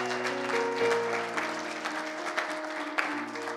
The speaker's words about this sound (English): Would you give them another big round of applause? Go ahead. If you love them, give them a big round of applause.